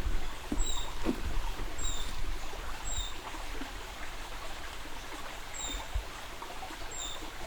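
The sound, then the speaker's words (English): A creek flows steadily, its broad rushing hiss loud and continuous throughout, while faint high-pitched bird calls, thought to be a brown creeper, chirp intermittently above the water. “Creek here.”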